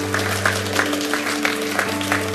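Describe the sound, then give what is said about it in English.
An audience applauds, for people who have just made a decision to follow Jesus after a prayer, in a steady, dense wash of clapping with no voices, a few slightly louder claps rising at regular intervals over a low constant hum. “Can we give a round of applause for those people that just made that decision?”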